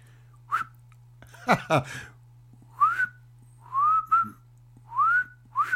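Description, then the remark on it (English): Several thin, breathy whistles in a short uneven sequence, each rising pitch sliding up and fading, with airy breath noise and a sharp bursty intake between them; a feeble, faltering attempt at whistling by a person who can't really whistle. “I can't really whistle. It's pretty pathetic, isn't it, really?”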